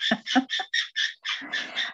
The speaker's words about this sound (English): Sorry, that's my parrot. I've got an African grey.